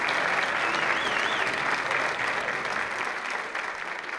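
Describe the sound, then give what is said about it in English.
A steady round of applause from an audience, dense crackling clapping that holds strong throughout and eases slightly toward the end, with no speech over it. “Ladies and gentlemen, let's all stand and give a nice round of applause.”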